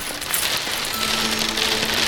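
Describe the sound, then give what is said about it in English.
Steady hiss of rain starting to fall, fairly loud and continuous throughout, with a faint low hum running underneath and no voices. “There it is! It's happening! It's happening! It's raining!”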